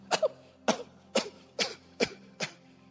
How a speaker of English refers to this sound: I just scatter it in the air. You see that? Some of you will be sitting down nicely like this lady, and some of you will start coughing now.